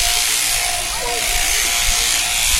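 A steady, loud electric buzzing of a sheep shearing handpiece runs continuously as a sheep is shorn, with faint bleating-like tones and muffled background noise mixed in.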